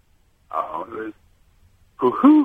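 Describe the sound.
A person vocally mimics the coo of a pigeon heard in Hungary, giving a pair of soft hooting tones, a short pause, then another rounder hoot, moderately loud.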